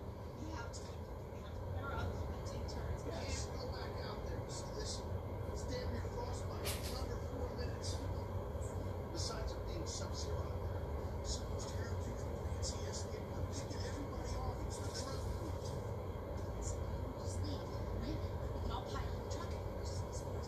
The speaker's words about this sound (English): Truck is gone.